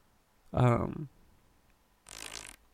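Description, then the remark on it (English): A video game motorcycle engine gives a short, buzzy sputter lasting about half a second, followed after a pause by a brief hissing, noisy burst. Both are fairly loud. “That's the, actually the sound of the motorcycles.”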